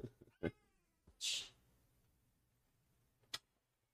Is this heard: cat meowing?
yes